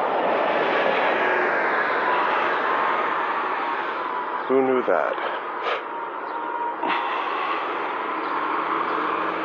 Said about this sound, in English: Sorry for the trucks, I'll be off this road in a minute.